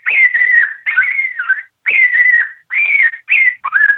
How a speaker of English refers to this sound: And then this is coyote death cry, same thing.